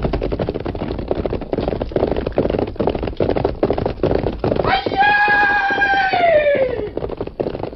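Rapid, steady hoofbeats of a galloping horse pound throughout, loud, with a long, wavering neigh rising over them near the end.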